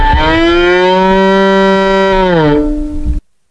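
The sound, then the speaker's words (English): A violin mimics a cow's moo: one loud, sustained, reedy low tone held for about three seconds, sliding downward in pitch before cutting off abruptly, with no talking. “For example, he is playing the sound that a cow would make on his violin.”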